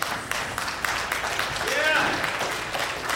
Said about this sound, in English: I'm glad you're clapping because I'm going to make it really practical.